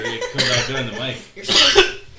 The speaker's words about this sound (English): Can't stop coughing.